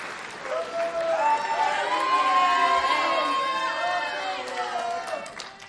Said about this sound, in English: Okay, clap for yourself.